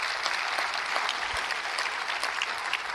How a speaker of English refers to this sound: Clap your hands to that. That's good stuff.